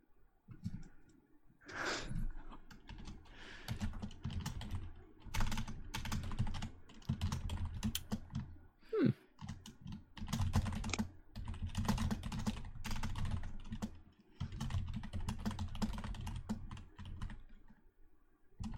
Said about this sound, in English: I hear a lot of typing going on. There's stuff happening.